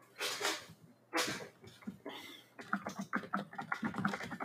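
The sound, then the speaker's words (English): Quiet, rapid typing on a keyboard as people type answers naming Steven Spielberg films: a couple of brief bursts of clicks, a pause, then a steady run of quick keystrokes. “Ooh, I hear the typing already.”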